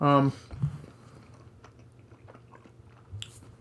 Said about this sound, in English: Still eating pizza, guys. Let's get some nice... Let's have 10 seconds of just chewing.